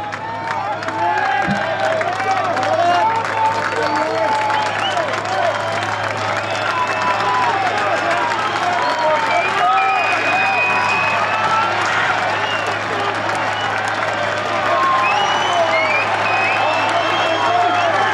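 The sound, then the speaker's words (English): Sustained applause from a large golf gallery as Rory comes up the 18th fairway, steady and loud for the whole stretch, with scattered cheers and whoops rising above the dense clapping and a low hum underneath. “Guys, on the subject of Rory being the crowd favorite, I actually recorded Rory coming up 18th fairway, which, you know, again, was definitely by far the most applause of anyone.”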